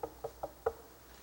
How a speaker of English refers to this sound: And then he hears a knock at the door.